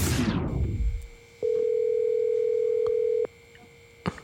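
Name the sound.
telephone dial tone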